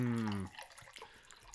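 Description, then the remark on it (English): Water pours into a glass in a brief burst with a ringing tone, then trails off into a few soft trickles and drips. “That is some more non-alcoholic beverage. Yeah, that's water.”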